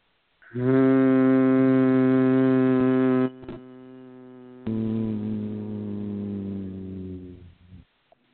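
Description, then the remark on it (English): After a slow breath in, a person hums a long, steady nasal tone at one low pitch, loudly, softening briefly partway through before swelling again and trailing off. No talking. “Please join in stature, thanking Source, slow, silent, loving breath in 5, deeper, 3, deeper, 2, and this nasal hum.”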